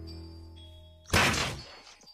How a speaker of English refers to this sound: I close a shaft over the gap, but Sargo starts bashing at the door. Each strike sends vibrations through my arms.